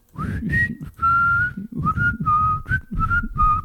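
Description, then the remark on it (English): Breathy whistling, a string of short wavering notes buried in loud rushing air, the tone thin and unsteady as if the whistler can barely get a clean pitch. “That's all air. That's no whistle.”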